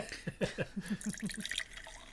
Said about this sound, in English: I'm going to pour in my glass as well.